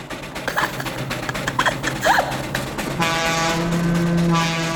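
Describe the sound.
A voice mimics squealing, worn-out brakes that need oil: after some brief vocal chatter, a steady, loud, shrill squeal holds for the last couple of seconds, slightly train-whistle-like.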